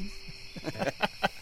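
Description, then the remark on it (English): Crickets sing at night on the back of Maestro's patio, a steady, high-pitched trill that runs the whole time, with a few louder rhythmic pulses rising over it toward the end. No one speaks. “Candles are lit, crickets are singing.”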